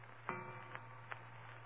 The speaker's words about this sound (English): And then the clock on the mantel behind me began striking.